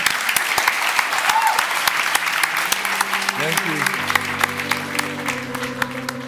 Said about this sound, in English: And if it doesn't, we can start clapping. You can just start clapping, yeah.